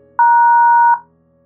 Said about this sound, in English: Can't come to the phone right now. Please, leave a message at the tone.